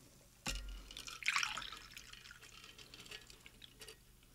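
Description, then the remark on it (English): A short splash of water pouring into a glass holding a little mango in the bottom, fairly quiet, after a soft knock, then tapering into faint trickles and drips. No one speaks. “Okay, could use a little more water, but we're just making do with what we have”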